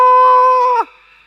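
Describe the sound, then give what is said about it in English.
In a church, a person acting scared gives a single loud, frightened scream that holds a steady high pitch for under a second, then slides downward and breaks off, leaving a faint ringing tail. “Maybe do a little bit of scared sound, you know, a bit of a scream.”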